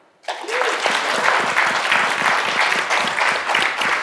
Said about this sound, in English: Was that a golf clap or was that enthusiasm? I can't tell.